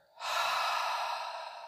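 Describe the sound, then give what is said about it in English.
A long, deep breath, airy and breathy, fairly loud, held steadily for over a second and fading slightly at the end, with no talking. “Breathing in now, breathe in, I am, breathe out, fire.”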